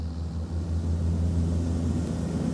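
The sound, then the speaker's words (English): A small propeller plane flying around Mount St. Helens, looking for volcanic activity, drones steadily overhead, its low, buzzing engine hum holding at an even level throughout with no voices present. “He hears a small plane in the air.”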